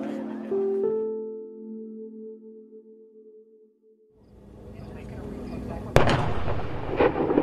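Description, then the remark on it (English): Bombing explosions, from bombings that cut off internet and phone access: a low roar swells up, then one sharp, loud blast cracks through, followed by another heavy boom a moment later. A steady humming tone comes before the blasts. “And meanwhile, the same bombings that cut off internet and phone access continued, and the public was given a reason for it soon after.”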